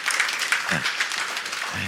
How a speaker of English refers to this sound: And we raised $175,000, and more money is yet to come in. Is that cool? So I'm going to clap for that. That might be worth clapping.